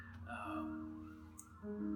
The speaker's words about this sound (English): We surrender even as the siren is going down the street.